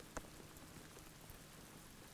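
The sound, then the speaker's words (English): Steady rain patters on a surface where a person sits out in it, a dense continuous hiss broken by a few sharper drips and taps near the start and end. No one speaks. “And I'm speaking about fluidity as I'm sitting in the rain, so I'm sure this is why this is all happening.”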